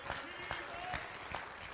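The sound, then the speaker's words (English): A standing audience claps together in a steady rhythm for revival, roughly two beats per second, with accented claps standing out from a dense, continuous wash of hand-clapping. “Everybody stand and clap your hands.”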